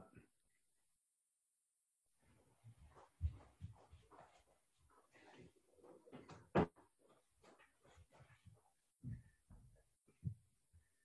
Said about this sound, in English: Sorry, I had to go close the door real quick.